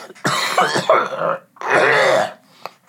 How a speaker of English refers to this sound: I sound horrible right now. I'm going to cough one more time.